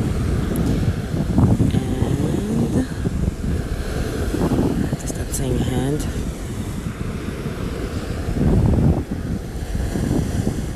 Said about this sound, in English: Whew. And it's a bit windy. And I am at the beach.